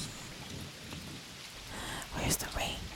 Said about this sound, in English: It's the rain.